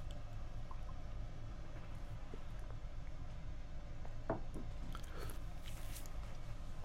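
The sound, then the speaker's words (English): Quiet drinking sounds of someone drinking water over a low steady hum: a few soft gulps and wet clicks cluster near the end, with no talking. “Drink water.”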